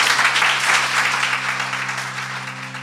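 A crowd applauds steadily, a dense wash of many hands clapping that holds loud and then eases slightly toward the end, with a low steady hum underneath and no voices.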